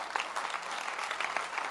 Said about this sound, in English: Clap your hands.